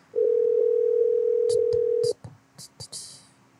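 A steady telephone tone sounds as a call is placed during a TikTok live stream, holding for about two seconds at moderate loudness, then cutting off into a few brief clicks and rustling bursts.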